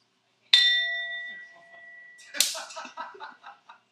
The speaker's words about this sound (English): Listen to the sound of the singing bowl.